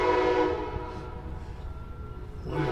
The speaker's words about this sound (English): Train time. Going to do it again.